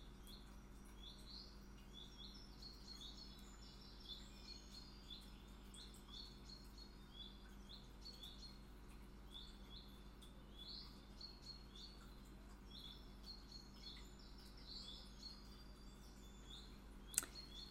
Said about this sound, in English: Are you grateful for the birds singing?